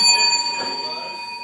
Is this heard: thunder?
no